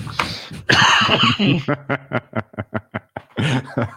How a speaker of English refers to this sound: He just brought on a coughing attack for me.